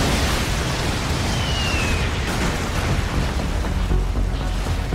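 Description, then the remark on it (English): A car explosion from a film: a loud, dense burst of rumbling, crackling roar that stays steady and powerful for several seconds, with no voices over it. “And then his car explodes.”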